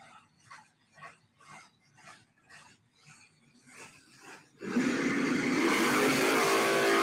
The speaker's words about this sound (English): You can see a burnout here. We're going to watch these guys go.